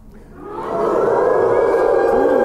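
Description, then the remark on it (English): A crowd of voices imitates a ghostly wolf howl, swelling from quiet into a loud, sustained, wavering wail that holds steady for about two seconds, with a pitch that dips slightly near the end. “Can we hear a spectral howl from this audience right now?”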